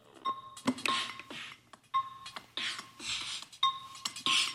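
A door being unlocked: three repeated cycles of a steady electronic beep followed by sharp metallic clicks and rattling bursts, with no voices.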